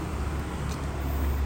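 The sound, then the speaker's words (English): A car rolls along the street, its low, steady engine and tyre rumble filling the short stretch with no voices over it. “Oh, I like that car. It's pretty.”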